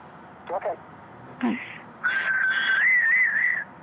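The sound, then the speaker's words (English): A person whistles a short family signal that resembles a bird call: two quick chirps, a downward swoop, then a long, wavering sustained note, clear against a quiet background. “Thought I might ask you a favor, see if you'd do the family whistle for the podcast, the Farmcast.”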